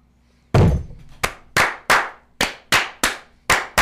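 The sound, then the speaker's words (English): Firing glasses are slammed down onto a table during a toast in a loud volley: about nine heavy, sharp thuds in a steady, quickening rhythm, with no voices. “I crushed my little dead fly friend with my cannon.”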